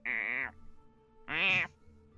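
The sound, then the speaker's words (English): Two drawn-out, nasal meows from a cat that has just woken up, each about half a second long, separated by a short pause. They are fairly loud, with no talking around them. “That cat is awake, and you're everybody can hear this occasional.”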